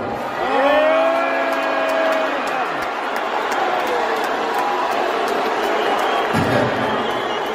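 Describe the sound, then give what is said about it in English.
A large audience roars with a blend of loud, sustained booing and cheering as Elon Musk is introduced as the richest man in the world, a dense, steady wall of voices that continues for several seconds without letting up. “a mixture of boos and cheers”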